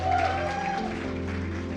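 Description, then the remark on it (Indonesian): An audience applauds for God steadily, a dense wash of many hands clapping at once, sustained throughout with a low musical hum and held tones underneath. “Come on, tepuk tangan buat Tuhan.”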